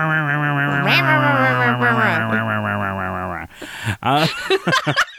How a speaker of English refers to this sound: And then you put in a chainsaw noise right here.